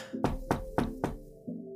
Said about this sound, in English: You knock on the door, and after a few moments, the door opens, and you look...